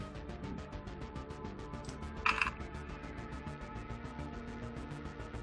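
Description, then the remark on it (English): A dense, continuous clatter of many dice being rolled at once on behalf of all the players, rattling and tumbling with rapid overlapping clicks and one sharper, louder clack partway through; no one speaks. “That's a lot of dice.”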